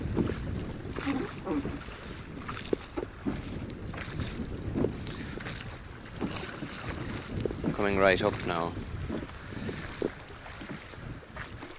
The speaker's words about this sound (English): You can hear the sound of the oars now being pulled. So we pull into the little Key, which is very sheltered.